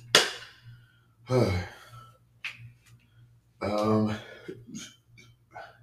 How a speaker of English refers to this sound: I like to think that my coughing fit is over, which means I was actually considering taking a break from training because I've been feeling really sick. I've been doing a lot of coughing, and I believe it was a cold.